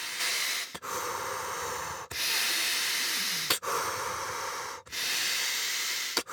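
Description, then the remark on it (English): Someone breathes quickly and forcefully, in through the nose and out through the mouth, demonstrating the breathing used to get through a cold shower. Steady rhythm of airy, hissing breaths with brief pauses between them and no talking. “But when I first started years ago, I would like put the cold shower on and I would just breathe like in through my nose, out through my mouth, like pretty rapidly.”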